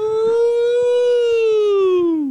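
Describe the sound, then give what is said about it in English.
A loud, sustained vocal wail that starts as a cheer and settles into a steady siren imitation, holding its pitch for about two seconds before sliding downward at the end. “That was supposed to start as like a woo. And right, that turned siren.”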